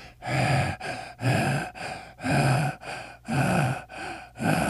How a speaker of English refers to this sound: I know you're ready. I can hear your breathing.